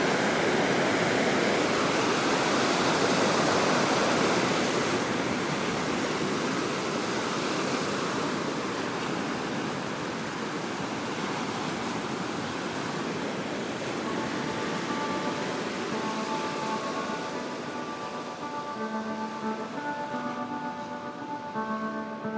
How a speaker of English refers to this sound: Arabian Sea, from the ancient port of Calicut at the bottom of India.